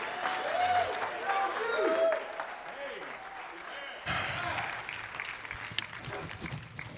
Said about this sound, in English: So give a great hand of applause to him